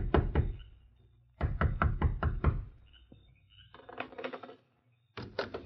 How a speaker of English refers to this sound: Although it was late at night, the door of the sheriff's home echoed with a loud knock.